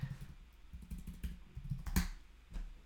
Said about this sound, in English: Oh, stand by. Hold on a second. I keep clicking the wrong one. We have too many dang graphics.